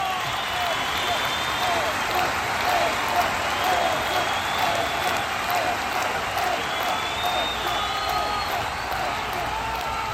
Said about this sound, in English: As the core of the flotilla entered the central harbor and made its way around the massive statue of Cedo, their cheers erupted across the water.